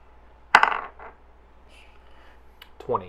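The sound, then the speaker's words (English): Dice land with a sharp clack and rattle briefly before settling, followed by a single faint tick a moment later. The dice are rolled for a dexterity check in a tabletop game. A voice starts speaking right at the end. “All right, so just go ahead and give me a roll for dexterity for avoiding any gunfire while you're getting back to Zapper.”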